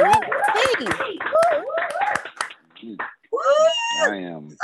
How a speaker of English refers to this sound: No, y'all, yeah, unmute your mics and clap for that. That's pretty cool.